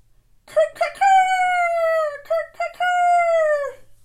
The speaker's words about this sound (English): Then the rooster crowed.